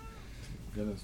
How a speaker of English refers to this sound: Oh, my God. Cat. It's a cat.